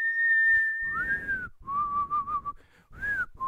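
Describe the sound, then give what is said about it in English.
A short whistled tune, the Mogwai whistle of Gizmo: several clear sustained and gliding notes in a playful melodic phrase with brief pauses, loud, with no talking. “We hear the Mugwai whistle from Gizmo.”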